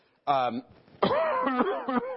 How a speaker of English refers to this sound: I have a bit of a cold. I apologize. Do not come near me. I'm going to cough a little bit.